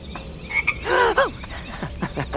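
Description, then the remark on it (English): A very large toad in the woods gives a couple of loud, throaty croaks, with softer chirping calls scattered before and after against a faint background hiss. “Don't worry, that is just a toad.”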